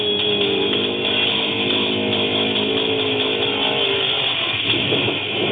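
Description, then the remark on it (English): A powerful trophy truck engine roars loudly and steadily during a trophy truck race in San Felipe, its deep drone holding a constant pitch with a slight rise near the end, and no voices are heard. “Trophy truck race action continues as Corey Kezar is still holding on to the lead”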